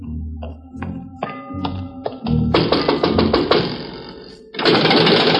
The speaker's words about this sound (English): Night has fallen over Bombay Harbor, and the only footsteps heard on the mole are those of watchmen and police, and a few beggars too hungry to sleep.